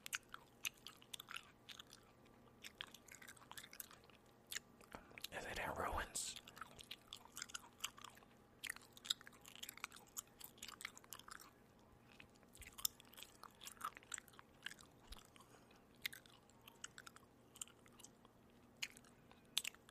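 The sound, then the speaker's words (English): Moist chewing of sugar-free gum with steady smacking and clicking mouth sounds throughout, a brief louder rustle near the middle, and faint murmured voice underneath. “This is sugar free. I hate chewing gum that's not sugar free.”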